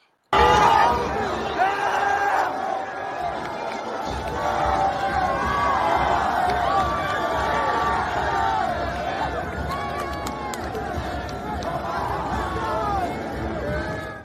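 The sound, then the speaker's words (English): A large arena crowd at a Bearcats basketball game, after an overtime win against TCU, roars and cheers continuously while crowd-surfing the Bearcats mascot, a dense, loud wash of many voices with scattered shouts and yells rising above it, sustained from start to finish. “And the Bearcats mascot was riding the wave because the crowd was base surfing him, you know, he was riding the wave basically.”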